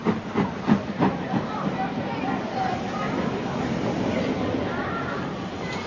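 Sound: steam train hissing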